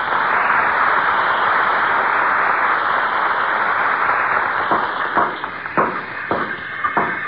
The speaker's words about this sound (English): that's what the sound of carpenters at work is to a guy who loves to tinker and putter